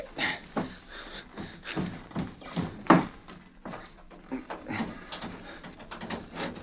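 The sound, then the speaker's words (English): A loud knock on a bedroom door in the morning: a run of hard, uneven raps and thuds, with one especially loud bang partway through; no voices. “The next morning, he awoke to hear a loud knock on the door.”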